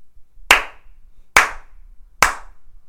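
Three sharp hand slaps ring out one after another, evenly spaced about a second apart, loud with a quick decay and near silence between them, given as a rating out of five slaps.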